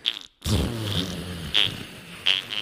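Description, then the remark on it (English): A voice imitates a low, wet fart with a long, sputtering, rumbling blurt that runs for a couple of seconds, fairly loud, following a brief sound and short pause. “A low, wet fart.”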